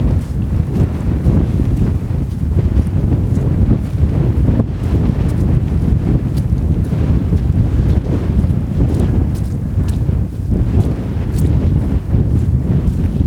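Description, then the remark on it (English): Strong, steady wind roars across exposed, treeless open ground of rolling hills, buffeting the microphone with continuous low rumbling gusts and no pauses. No voices or other distinct sounds break through. “There's no trees, and it's so exposed. It's always windy.”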